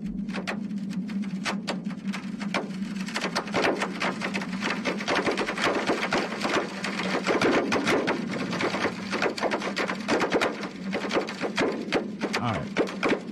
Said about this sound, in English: A company called EarthTunes, developed by Northwestern University, turns jagged lines scratched across a seismogram into a scary soundtrack worthy of a horror film. This is their app giving you the sound of the Icelandic volcano.